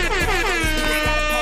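A loud air horn blares continuously for the whole moment, its brassy tone wavering slightly while a deep thumping beat pulses underneath.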